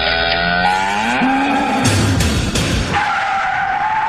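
A cow moos in a long, loud, drawn-out call whose pitch slides and wavers, followed by a rough, noisy burst and a steadier tone, with no one talking.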